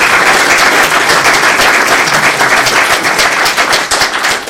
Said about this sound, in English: So thank you very much for coming and for giving up your time. I think, you know, before we go any further, can we have a round of applause for the speakers for giving their time.